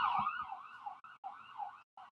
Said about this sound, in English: Sorry, can you guys hear the cops? Yeah. Okay. Sirens on our end, folks, not on your end.